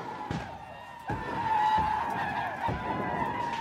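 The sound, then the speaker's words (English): A rebel yell from Confederate reinforcements ordered forward by Stonewall as they chase Pennsylvanian Union troops: a crowd of voices letting out shrill, wavering whoops that overlap and sustain, punctuated by several sharp bangs like rifle shots at irregular intervals. “He merely orders forward reinforcements who quickly give chase to the Pennsylvanians while letting loose their terrifying rebel yell.”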